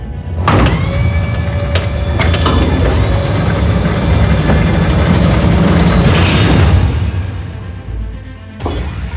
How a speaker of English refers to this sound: doors have been engaged. Opening now.